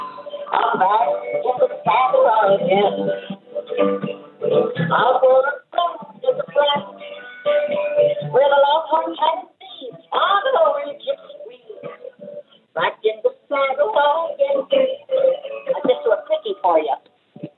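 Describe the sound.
A voice sings with acoustic guitar accompaniment from a bathroom, heard through a phone line, so it sounds thin, boxy and narrow. The performance runs steadily with brief pauses between phrases.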